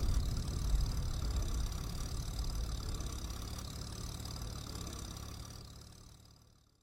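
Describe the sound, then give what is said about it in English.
A steady, low tractor engine drone rumbles continuously at moderate loudness, heard from a car driving behind the tractor on a road past farms across a peninsula, then gradually fades away near the end. No voices are heard. “A tractor forces me to slow down for a while as I fall behind it, happy in a way to see more of the scenery.”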